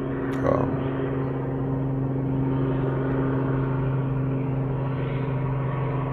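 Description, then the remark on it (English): A patrol helicopter flies overhead patrolling the area, its steady low engine drone holding a constant level throughout, with a deep humming tone beneath a broad whooshing roar and a brief tap early on. “Got a patrol helicopter flying over right now, just patrolling the area, making sure that all bags are secure.”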